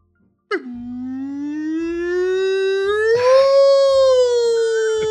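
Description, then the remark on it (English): A person's voice imitates a long, sustained dog howl, starting with a sharp onset then holding a steady, slowly rising wail for several seconds, fairly loud. “kind of howl”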